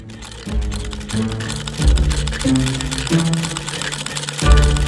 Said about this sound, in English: With a flick of her magic, the offending stitches were ripped out and the sewing machine was kicked back into high gear.